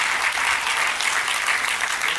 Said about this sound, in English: Oh, thank you for that weak hand clap, that weak, weak hand clap.